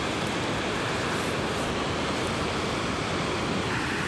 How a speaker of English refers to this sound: So, again, we're sitting right here up above the banks of the Selway River in the Selway Bitterroot Wilderness. And you probably hear the river a little bit in the background. We are in one beautiful lobe of this Idaho wilderness.